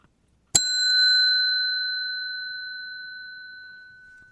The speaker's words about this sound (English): That's the little bell here in the Toyota in Thompson Park.